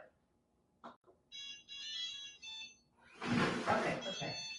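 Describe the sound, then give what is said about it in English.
An electronic alarm, set to go off at 9:15, rings in a few repeating bursts of high, layered beeping, preceded by a couple of sharp knocks, then keeps sounding beneath a louder rush of noise and voices. “I gotta reprogram that to stop going off at 9:15.”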